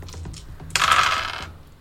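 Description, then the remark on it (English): A handful of seven dice, rolled for a dexterity and athletics check, clatters and rattles across a hard table in one bright burst lasting under a second, preceded by a few faint clicks, with no voices. “Dexterity athletics. Okay, that's 4. That's 7 dice.”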